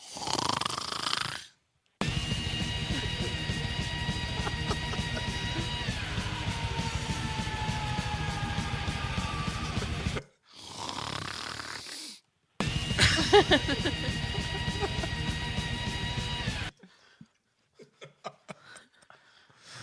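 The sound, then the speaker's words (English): A taped recording of loud, harsh snoring in long sustained bursts, rough and rattling with a strained, almost scream-like pitched tone running through it, broken by brief silent pauses and ending in faint sputters. “dude, that sounds like more of a scream than a snore.”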